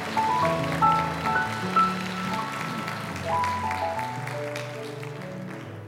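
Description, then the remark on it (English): A crowd, the Calvary audience, claps steadily for several seconds to give God praise, a dense crackling wash of many hands, while sustained keyboard or organ chords play underneath. “Now, would you clap your hands and give God praise?”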